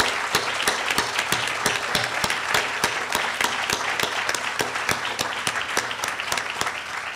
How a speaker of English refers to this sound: All of the ASLH staff members assist with the annual meeting. I think all of them are in the room. I'm extremely grateful to them. I really, really enjoy working side by side with them each day. So please join me in giving them a round of applause.